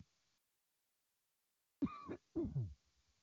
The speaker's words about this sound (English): And excuse me one moment, I'm just going to clear my throat.